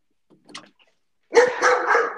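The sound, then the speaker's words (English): A dog barks: a faint, brief yelp comes first, then a loud, rough, drawn-out burst of barking that fills the last second. No one speaks. “Whose dog is going off?”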